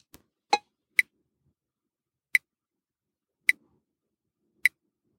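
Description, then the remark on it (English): A light detector app set to frequency-of-beeps mode, where faster beeping means more light detected, emits short, high-pitched electronic beeps, four of them at a slow, steady pace about a second apart, after a couple of soft clicks. No one speaks. “What we're hearing now is the frequency of beep.”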